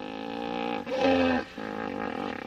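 A hippo's deep, rumbling bellow swells into a loud, harmonic-rich burst, then fades back into a low, grunting drone, all without any talking. The hippo vocalization was recorded on a trip to East Africa.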